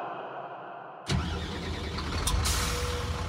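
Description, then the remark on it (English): The engine of the Danbury Trashers' team bus turns over abruptly after a second of low background hum as the team boards for the road back to Danbury, then settles into a loud, steady diesel rumble. “A line of despondent Trashers lumber aboard the team bus and slump down in their seats.”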